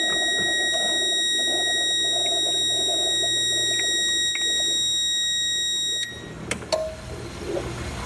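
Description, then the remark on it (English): A shrill electronic low-water alert tone from an ice maker sounds steadily for about six seconds, loud, then cuts off, leaving a few light clicks and handling noises. “You have a water fill light that also beeps when the water is low.”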